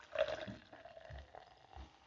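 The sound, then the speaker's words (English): A short, quiet pour of Synergy Raw Kombucha, Guava Goddess flavor, into a pilsner glass, with a brief gurgling splash at the start followed by softer trickling and a few low thumps, no voices. “Pouring it right here in the Pilsner glass, and while I'm waiting for it to fizzle out, you know, the bubbles and stuff”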